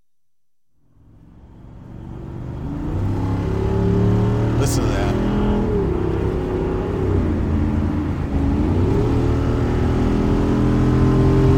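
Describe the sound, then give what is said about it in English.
A car engine roars up from near silence and climbs steadily in pitch as it accelerates to 90, then holds a loud, sustained drone with a brief gear-shift dip; a voice briefly speaks at the start. “Okay, that's 90. Let's not do that. Sorry. But I didn't even feel us make the acceleration almost. It just, like, jumped.”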